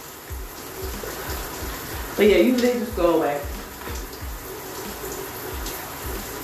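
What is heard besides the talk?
shower water running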